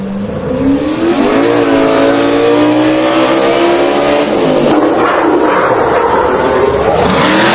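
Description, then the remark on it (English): The Minutemen truck's engine revs loudly and hard, its pitch climbing steadily for a few seconds and then roughening into a sustained roar, with no voices. “They give it their revs.”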